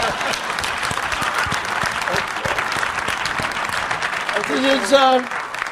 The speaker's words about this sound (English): Racism is a waste of time. And I would like some applause for saying that.